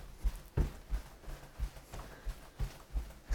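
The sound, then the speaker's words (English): A steady series of dull, muffled thumps, about ten in a row at a brisk walking rhythm, as heels stomp on rolled-up wet underwear to press it dry, with no talking. “And once you suck in your underwear, you begin stomping, not with the arch of your feet, but with your heels.”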